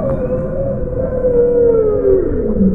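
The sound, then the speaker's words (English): Beluga whales whistling and chirping, recorded with underwater microphones, with long gliding tones that slowly fall in pitch over a steady, rumbling background hiss. No voices are present. “Beluga whales chirping and chattering and clicking.”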